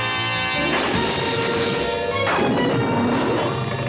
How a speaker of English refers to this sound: Those explosion effects, the sounds, they're classic Hanna-Barbera.